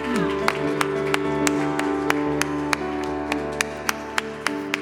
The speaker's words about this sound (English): Everybody said, come on, give a clap offering to the Lord.